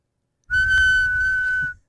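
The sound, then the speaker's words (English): A person whistles one steady, high-pitched note for about a second, imitating the hiss-like whistle of air leaking from a CPAP mask, with a low rumble of breath underneath. “Because your CPAP starts leaking.”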